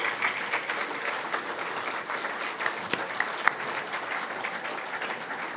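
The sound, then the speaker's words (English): A steady round of applause from many hands, a dense crackling wash of clapping that holds at an even level throughout, with a few sharper individual claps standing out. The applause is given for Paul Cartwright. “Please, let's give Paul Cartwright a round of applause.”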